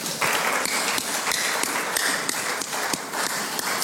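An audience claps steadily, a dense, continuous patter of many hands at an even loudness, with a few sharper individual claps standing out from the crowd.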